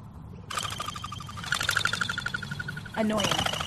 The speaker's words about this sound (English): Oh, it's a pigeon. It's a pigeon. Yeah. And those creatures are annoying. Well, not these ones. These are the crested pigeons that make this noise.